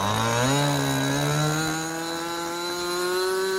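A model plane engine is revved up again with a loud, steady, high buzz, its pitch jumping up early and then climbing gradually as it keeps running. No one speaks.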